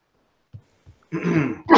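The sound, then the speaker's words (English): A fairly loud sneeze: a couple of short, soft catches of breath, then a sudden noisy burst lasting about half a second, with another burst beginning right at the end. No talking. “No, that was a great sneeze.”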